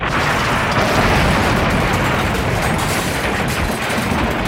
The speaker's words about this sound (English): Suddenly, a car smashed through the wall of the house.